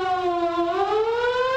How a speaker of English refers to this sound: What if a warning siren sounds? What should you do?